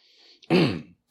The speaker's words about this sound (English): excuse me while I get another sip off of my Coke.